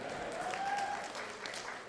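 A crowd claps steadily in a dense, even wash of applause that fills the whole moment, with a faint whistle-like tone rising briefly through the middle.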